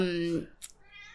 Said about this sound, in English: Oh, that's why she meowed.